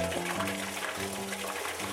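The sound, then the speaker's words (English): Clear sake pours in a steady stream out of pressed milky rice mash at a moderate, even level, with a low sustained hum running beneath the splashing flow. “When the alcohol content gets high enough, that milky mash is pressed and clear sake pours out.”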